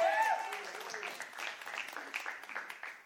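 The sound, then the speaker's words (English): A crowd gives the Lord a clap offering one morning, clapping steadily for about three seconds, a dense wash of many overlapping hand claps, with a brief voice or shout at the start and cheering voices mixed into the applause. “Come on, that was a great place to shout and give the Lord a big clap offering this morning.”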